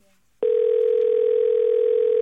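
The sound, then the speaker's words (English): After a brief quiet moment, a loud telephone tone starts abruptly and holds steady at a single mid pitch, unbroken, as an outgoing call is placed. “We should call Shredder and let her know.”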